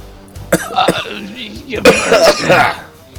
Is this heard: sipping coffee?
no